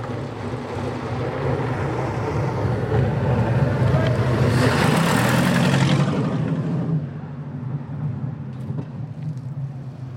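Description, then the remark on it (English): The Napier Railton aero-engined racing car, driven by land speed record holder Andy Green, drones steadily with a deep, throbbing rumble, swelling to a louder, harsher roar midway, then easing back to a lower growl. “Well, that's still the Napier Railton in the background, but they've changed drivers.”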